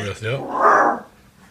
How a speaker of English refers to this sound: Hey, the dog says it's time to go. She's growling and running, so she must have heard something.